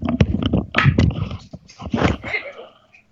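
A dog moves around, with quick paw taps, scuffling and rustling in irregular bursts, fairly loud, then trailing off into quieter shuffling.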